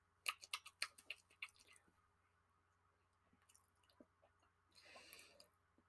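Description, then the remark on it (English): Wet chewing with a quick run of crunchy, clicking bites at the start, then softer mouth noises and a gulping swallow near the end, no talking. “Are you swallowing? Are you? Yes, I am.”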